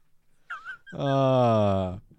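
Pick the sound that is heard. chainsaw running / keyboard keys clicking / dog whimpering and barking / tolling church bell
dog whimpering and barking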